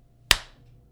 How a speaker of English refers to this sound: Big welcome. Clap.